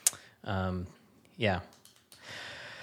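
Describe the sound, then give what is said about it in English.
A few small, sharp clicks of a pen being clicked, fairly quiet, mixed in with voiced vocal sounds and a burst of breathy noise. “I don't know why I'm clicking a pin.”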